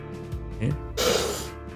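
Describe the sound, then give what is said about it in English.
A loud, forceful yawn: a strained voiced groan that bends upward in pitch, then a harsh, breathy rush of air before it trails off. No one speaks. “That was a violent yawn I just did.”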